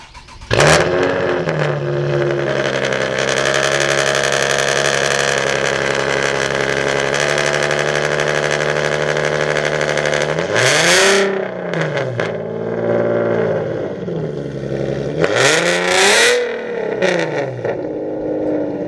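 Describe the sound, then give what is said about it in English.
A loud car engine rumbles steadily at a high idle at a car show, then is blipped through two sharp revs that surge up and drop back down near the end, with no voices. “What a glorious racket. Definitely a noise that petrol heads are going to love.”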